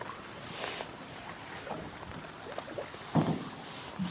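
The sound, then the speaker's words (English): Quiet, gentle strokes of a canoe paddle dipping and pulling through calm, misty lake water in the wilderness, with two soft swishing splashes a few seconds apart over the faint rustling brush of a coat and light wind. “All I can hear is the paddle moving through the water and the brush of my coat.”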